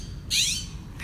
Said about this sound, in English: And then I specifically started noticing scrub jays, which are really loud, and I don't know how I didn't notice them before, and they sound like this.